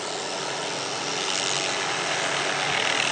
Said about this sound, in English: You'll only hear the sound, but this happened at my house. If I can get the darn thing to wake, you know. You know what that is? It's a helicopter. Yep. In my backyard.